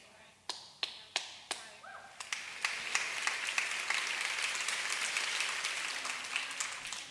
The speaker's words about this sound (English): I thought y'all gonna clap. I'm just gonna let you for a second.